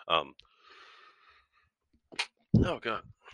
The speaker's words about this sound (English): I was trying to mute before I sneezed, but I didn't get to it quick enough.